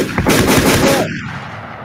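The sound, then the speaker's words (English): A loud burst of gunshot sound effect: rapid overlapping shots roar for about a second, then a dull echoing tail fades away. “Damn, I should have had the gunshots ready”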